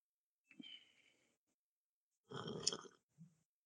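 A faint, airy slurp of someone sipping hot tea, followed after a pause by a louder breathy, hissing burst and a short low puff. No one speaks.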